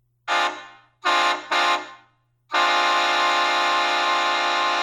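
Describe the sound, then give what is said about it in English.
A loud, chord-like Shocker XL train horn sounds three times: a fading first blast, two quick shorter ones, then a long sustained blare that holds steady to the end. No one speaks. “Okay, that's the Shocker XL.”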